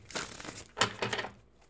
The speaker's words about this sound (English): All right. Shuffle, shuffle.